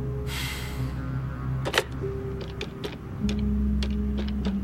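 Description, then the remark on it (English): A phone number being dialed: a brief rustle, then a quick, uneven series of sharp button clicks over a low steady hum with no talking. “I picked up the bit of paper Mikhail had so reluctantly given me, sighed, then dialed”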